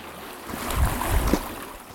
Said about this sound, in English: And I thought it would be nice for you to hear the loch. So here we go. Just a little bit of ambience. It's getting a little bit windy now, so maybe there might be some wind over that. Lapping.